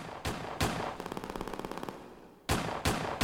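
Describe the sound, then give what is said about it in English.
Loud gunshots crack out at the opening of a hip-hop song, two single blasts followed by a rapid burst of automatic fire, then more heavy shots, all sharp with no talking. “Gunshots.”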